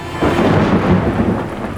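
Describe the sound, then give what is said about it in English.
A violent thunderstorm on a cold, rainy night in a small town, with a loud, deep rumble of thunder rolling in over steady rain, filling the whole short stretch and fading slightly toward the end. No voices. “We begin our tale in a small town on a cold, rainy night. Bearing the rage of the violent storm is the Grimloch Tavern”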